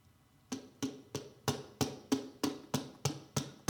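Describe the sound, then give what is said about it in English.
The open top of an 8-ounce plastic water bottle is slapped with the fingers about ten times at a steady, fairly quick pace, each hit a sharp hollow pop with a low thump beneath it. No voices. “And I'm going to slap the top as well.”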